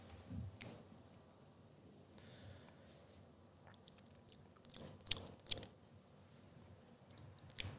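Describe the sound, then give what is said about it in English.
Quiet mouth sounds of someone sipping a thick plant protein shake mixed with water: a wet slurp early on, then a brief cluster of louder sips and swallows, with no talking. “All right, first sip.”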